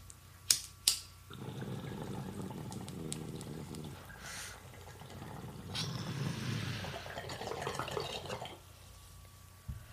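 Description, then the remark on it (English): A couple of sharp clicks, then a steady gurgling of water bubbling through a large bong packed from a grinder as someone takes a hit, for several seconds, rising and falling slightly before trailing off. No one speaks. “I like that bong. It's nice and oh my God, bubbly.”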